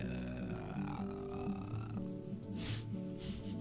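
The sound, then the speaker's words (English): A long, low, croaking burp-like sound made by a person using vocal fry, rumbling steadily for several seconds with a few breathy hisses near the end. “Sounds like a burp a little bit, right?”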